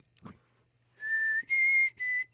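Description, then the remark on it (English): A person whistles the Hunger Games whistle: three clear, steady notes, each held briefly with small gaps between, the middle one slightly higher, over a faint low hum. “And see, I would call the elephant by like the Hunger Games whistle.”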